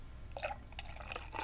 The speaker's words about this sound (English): Oh! What are you doing? Fiddlesticks! I'm pouring it all over the place. I fucking hate these glasses. Why'd I ever buy them?